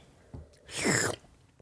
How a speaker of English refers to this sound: you know, this could have been your product right here as I sip this.